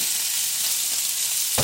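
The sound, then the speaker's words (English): Steady, hissing sizzle of grease frying in a pan under a splatter guard, bright and constant with faint crackles and spits throughout, ending in a brief louder burst of crackling. “Putting a splatter guard over the thing just so I don't get splatteries all over the microphone right here.”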